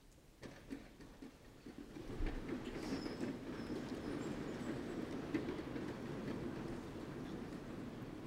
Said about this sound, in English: I love the sound of those chairs. It's like angels clapping.